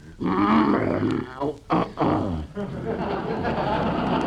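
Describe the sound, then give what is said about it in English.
A bear named Carmichael growls and roars loudly and continuously for about four seconds while being coaxed to open its mouth and take cough syrup, a rough, throaty rumble broken by a couple of short gasping pauses midway before settling into a steady snarl. “Now, here, Carmichael, be a good little bearsy-wearsy and open ooze mouth.”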